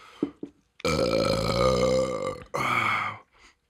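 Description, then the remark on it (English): A long, loud burp with a rough, gurgling drone and a little drool, followed by a second shorter belch and a few faint wet mouth sounds. No one speaks. “A burp with a little bit of drool.”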